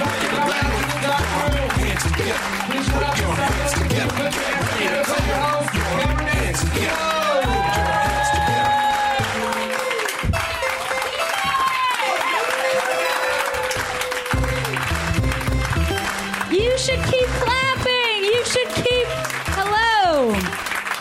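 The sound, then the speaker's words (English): A show audience, asked to put their hands together, claps steadily for about twenty seconds, the dense clapping running loud and unbroken beneath sustained tonal music and voices with gliding pitches. “Now you can stop now. That's, you nailed the shit out of it. You clapped.”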